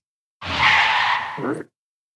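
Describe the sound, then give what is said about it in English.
A single sharp screech of car tires skidding to a halt, loud, lasting just over a second before cutting off abruptly. “We need to pull the Thunderbird to the side of the road.”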